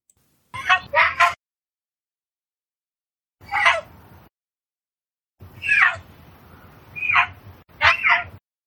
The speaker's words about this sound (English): But it just hasn't lost that habit because it's lived in captivity all its life. So let's listen one more time as this excited mountain lion gets ready to get some food.